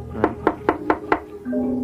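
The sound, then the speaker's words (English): Five firm knocks on the door of a ramshackle house on a very dark night, in a steady, even rhythm and fairly loud, followed by a low, sustained tone as the knocking stops. “Try again.”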